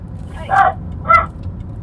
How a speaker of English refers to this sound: There's a dog fight.